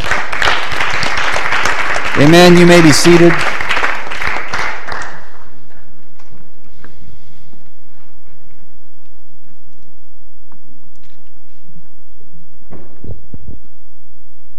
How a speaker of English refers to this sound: Clap your hands to him.